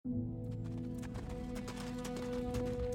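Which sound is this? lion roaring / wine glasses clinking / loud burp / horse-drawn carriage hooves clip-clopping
horse-drawn carriage hooves clip-clopping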